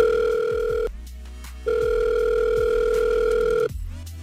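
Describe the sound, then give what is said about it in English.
A telephone ringback tone sounds twice, each long steady electronic ring lasting about a second and a half with a short pause between, clear with no voices, as the 99.9 Virgin Radio hosts call a man. “Well, listen, what we're going to do is we're going to call him next.”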